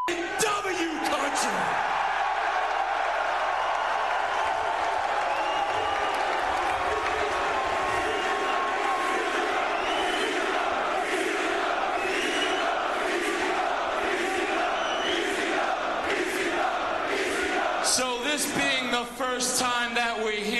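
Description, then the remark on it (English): An ECW wrestling crowd in Milwaukee roars continuously at high volume, a dense wall of cheers, whoops and shouting voices that swells and surges for the full twenty seconds, with a sharper burst of yelling near the end. “So by the reaction, this must be ECW.”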